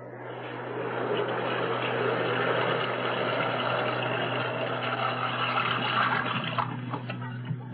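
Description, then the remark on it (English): Water rushes steadily from a tap into a bathtub being filled for a hot bath, a continuous, fairly loud hiss with a low hum underneath, holding even from start to finish with no voices. “I'm going to boil some water and fill the tub.”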